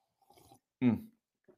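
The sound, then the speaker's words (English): A faint, brief slurp of someone sipping coffee, followed by a louder, short voiced exhale of satisfaction and a quiet trailing breath. “Let me get a sip of this coffee though.”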